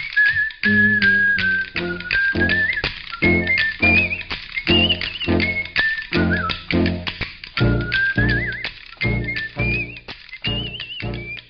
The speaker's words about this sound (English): Hey man, who's that cat coming down the street? I don't know, but it sounds to me like that whistling man with the bone. Sure having himself a ball.